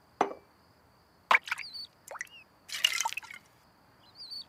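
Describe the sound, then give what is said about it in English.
A small toy dips into water, making a few distinct, irregularly spaced plops and drips, fairly quiet, with no voices. “It's drinking the water!”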